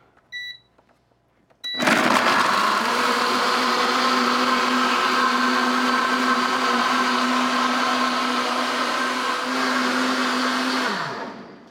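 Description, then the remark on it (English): A blender mixing vanilla extract, organic rolled oats and organic purple sea moss gel whirs steadily for about ten seconds, a loud motor drone with a strong low hum, then winds down. Before it starts, a couple of short electronic beeps sound. “So we adding that organic purple sea moss right now, the sea moss gel. And we just gonna put that cover on it.”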